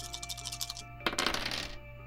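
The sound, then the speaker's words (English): Three dice clatter and tumble across a table, a light rattle followed by a sharper, busier burst of clicks that quickly settles; fairly quiet, no voices. “Another 3 dice rolled and another 0 successes gained.”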